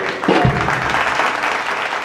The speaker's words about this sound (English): That's early applause. I didn't say anything yet. Well, we did. They're applauding your intro? I'm applauding my intro.